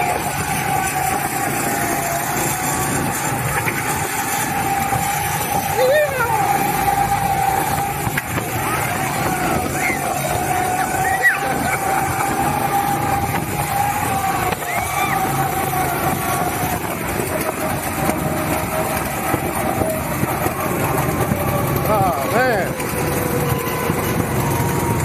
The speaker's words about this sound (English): This was his first time ever riding on a go-kart. So you may hear me speaking to him or trying to, you know, scream loudly over all the noise of the go-kart.